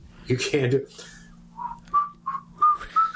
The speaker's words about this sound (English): You know how hard it is to whistle when you want to? It's impossible to whistle when you smile. Go ahead, whistle a little. You can't do it, see? Not smiling.